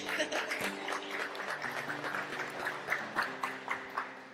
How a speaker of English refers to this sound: Oh yeah, clap it up.